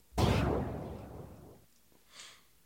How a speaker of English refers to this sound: Gunshot. My guy was not playing though.